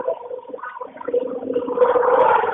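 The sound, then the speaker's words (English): Loud, rough rumbling and rattling of a train interior heard over a phone call, a continuous churning roar that grows denser and louder in the second half, with no voices over it. “Are you on a train? I am on a train. That is incredibly loud.”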